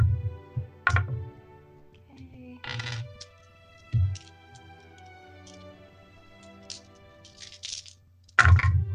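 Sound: many dice being rolled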